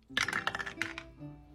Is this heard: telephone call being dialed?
no